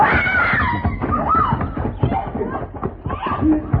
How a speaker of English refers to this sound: What was that? Oh, sound like our lady scream, Mr. Paladin. Come on.